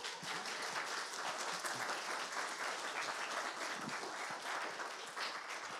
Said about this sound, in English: And I'm sure, again, you guys, this is just one of the resources of our church, just dear saints. In our life, in our church here, so let's thank them by clapping and praising them.